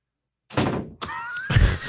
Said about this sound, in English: I'm trying to record a podcast here and there's people walking in your office. Who is that? Why'd they slam the door? She's all pissed.